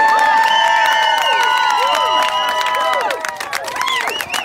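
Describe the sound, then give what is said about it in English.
A large crowd of hundreds cheers loudly, a dense roar of overlapping shouts and whoops with scattered clapping, steady throughout and easing slightly near the end. “Sounds like a couple hundred people, right?”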